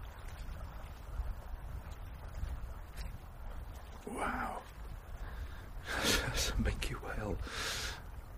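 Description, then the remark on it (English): A whale surfaces at the edge of sea ice on a frozen sea, about 3 meters from the recordist, over roughly 300 metres of seawater, and exhales in loud, breathy whooshes: a short blow, then a longer, rougher gush of breath in two or three pulses, over a steady low rumble of wind and water. “Surfaced to breathe about 3 meters away from me off this ice edge.”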